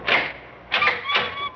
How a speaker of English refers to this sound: Come along. Well, come along. This way. Opened the parlor door.